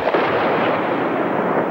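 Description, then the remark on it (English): A dense, steady roar of heavy bombardment as the Yugoslav Air Force drops bombs and fires rockets and cannon at militia targets, blending into one continuous rumbling wall of noise, loud and unbroken, with no voices. “The Yugoslav Air Force dropped bombs and rockets and cannon at militia targets throughout the day.”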